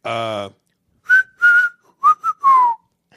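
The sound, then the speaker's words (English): A short burst of voiced sound gives way to someone whistling a few short, sliding notes in a halting tune, fairly loud, ending with a falling pitch. “I suck at whistling.”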